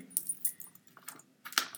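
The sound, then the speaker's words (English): Quick, irregular clicking and tapping of someone typing a person's name on a keyboard, fairly crisp, with a short pause before a final flurry of keystrokes. No voices. “Yeah, you would think she would get it because I'm typing a person's name in”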